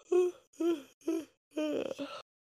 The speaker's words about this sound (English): Stop yawning. You're making me yawn. I'm sorry. I'm sleepy. Me too.